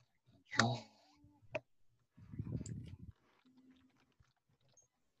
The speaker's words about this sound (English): Oh, I love keyboard. Oh yeah, keyboards are a good one. If you want a keyboard, I got a keyboard. Yeah, type some stuff.